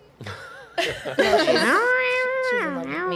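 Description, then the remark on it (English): A person imitates a cat's meow with a drawn-out, wavering voice, rising and falling in pitch over about three seconds, loud with no other sounds. “Is that cat for yes?”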